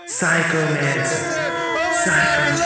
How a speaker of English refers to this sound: And with that, the crowd continues to shout, Psychomancer.